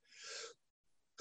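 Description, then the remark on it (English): A breathy, drawn-in gasp, a brief silence, then the loud, abrupt burst of a second sneeze erupting at the very end, cut off mid-sound. No talking. “There's the second one.”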